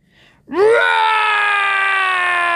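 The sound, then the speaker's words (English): A dragon's roar bursts out after a brief quiet moment, swooping upward in pitch and then holding as a loud, sustained, shrill howl rich in harmonics, echoing across the city of Vancouver, with no talking. “Roar! The air is filled with a great, terrible sound.”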